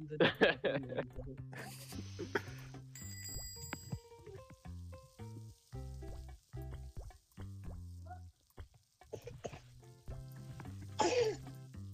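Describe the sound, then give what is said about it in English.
A sharp sneeze bursts out over a busy background of tonal electronic sounds, with a second noisy burst near the end and faint voices in between. “Bless you”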